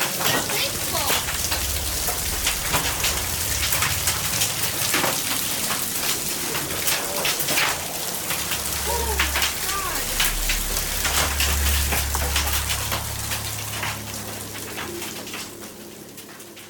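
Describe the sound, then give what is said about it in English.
Dense, steady clatter of hail from a thunderstorm pelting a hard surface, sharp individual impacts scattered through a constant roar, with a low rumble rising midway before the downpour slightly eases. “Any thunderstorm which produces hail that reaches the ground is known as a hailstorm.”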